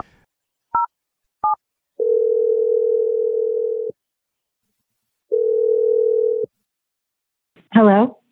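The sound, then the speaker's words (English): Two quick touch-tone keypad beeps as a cell phone number is dialed, then a phone line tone sounding in two long steady stretches separated by silence, ending with a brief voice answering. “We're dialing a phone number and seeing what she has to say.”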